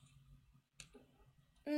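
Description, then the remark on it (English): A sharp clack of dice hitting a table during a perception roll in a tabletop role-playing game, followed by a brief light rattle as they settle on an 8, then a loud voice abruptly cuts in at the end. “Which isn't possible, especially since I rolled an 8.”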